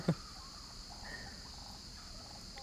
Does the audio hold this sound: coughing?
no